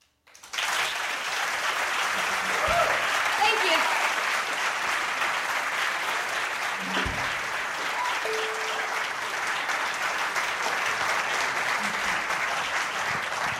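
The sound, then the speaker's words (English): Sustained audience applause for a musician after her performance at a Nerdist Writers panel, a dense, steady wash of clapping that starts abruptly and holds at an even, loud level for the full stretch, with faint scattered voices and a brief whistle-like tone mixed in. “please give her even more applauding.”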